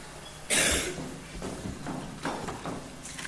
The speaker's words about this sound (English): And I'm a little bit unwell at the moment, so apologies for the coughing, and I'll try not to pass it on to you guys.